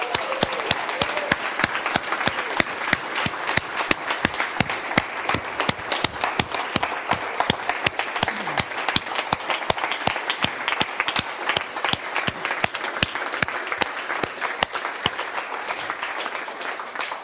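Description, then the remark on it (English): A crowd applauds Jesus steadily for about seventeen seconds, a dense, even patter of many hands clapping with no voices standing out. “Quoting from Psalm 117, the word extol actually means to do what? To applaud.”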